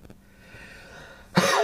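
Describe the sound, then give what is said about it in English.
A quiet stretch of faint background hiss, then a single sudden, harsh cough bursts out loudly near the end and carries on to the cut-off. “now that my cough has gone down, it's nowhere near as bad as it was.”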